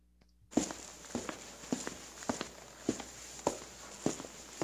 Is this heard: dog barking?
no